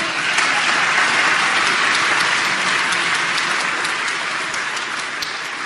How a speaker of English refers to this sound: Now, you clapped, or a lot of you did.